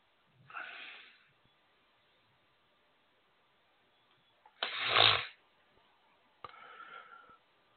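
A person blows their nose in three separate bursts: a short, soft honk, then a long, forceful blast, and finally a shorter, rougher blow. No one speaks.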